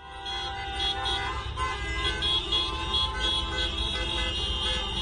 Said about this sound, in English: This action involved hundreds of cars driving around the legislature honking